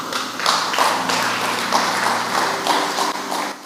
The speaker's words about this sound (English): You didn't clap well because you didn't like it.